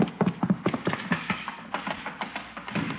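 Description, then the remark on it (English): Horse hooves clatter across a hard floor inside a house in a quick, uneven run of sharp knocks, steady in loudness, with no voices over them. “Hey, that sounded like a horse.”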